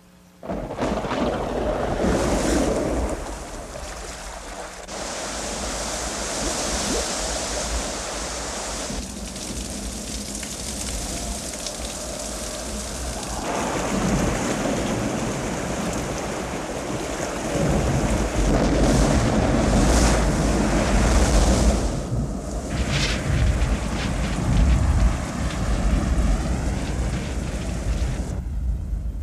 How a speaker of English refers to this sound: A deluge of such magnitude that the world's greatest waterfalls, flowing together for more than 1 million years, would only just begin to approach its results.